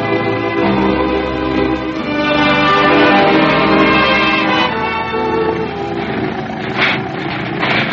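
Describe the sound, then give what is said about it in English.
An old jalopy car called the Blue Arrow, which has no brakes, runs its engine loudly and steadily for several seconds, a rattly, buzzing drone with shifting tones and no voices over it. “I never heard such a noise!”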